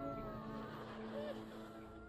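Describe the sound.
A brief, faint cat meow rises once over a steady electrical hum and murmuring background voices, sounding thin as if played back through a speaker.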